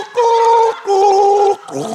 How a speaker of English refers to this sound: Why can none of you... Can white people not gargle?